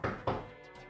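impact, knocking on wood

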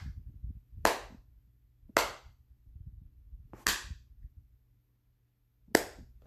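human body sound, slow clap

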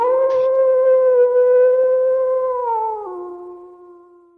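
sound effect, wolf howl sound effect

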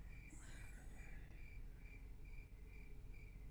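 insect, crickets chirping

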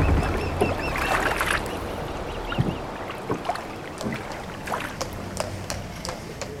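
vehicle, boat moving on water

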